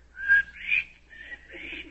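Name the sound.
whistled bird call imitation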